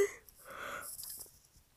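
A single breathy yawn, a drawn-out airy inhale that swells and then trails off into a soft exhale, fairly quiet, with no talking.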